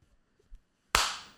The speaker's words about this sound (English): It's like the one space that's actually out of frame. So. They just hear the clap, but like they don't see it.